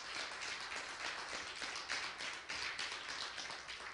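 A church audience clapping in praise together in a dense, steady patter of many hands, moderately loud and sustained throughout, with no voices standing out.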